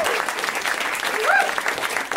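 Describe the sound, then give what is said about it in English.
Steady applause from a comedy show audience, a dense wash of many hands clapping at an even, fairly loud level for a couple of seconds, with a faint whoop or cheer rising briefly in the middle. “Round of applause for that gal.”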